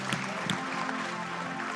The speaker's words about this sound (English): Amen. Amen. Come on, put a little clap together.